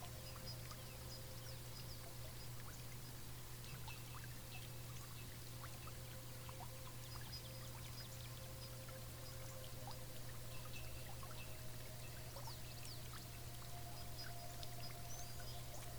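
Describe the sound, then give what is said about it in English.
Spring water flows and trickles steadily into a clear, ice-cold pool, a soft continuous babble with faint splashy detail, heard alone and fairly quiet, with a low steady hum underneath and maybe birds. “When you go over to it and look inside, the water is crystal clear.”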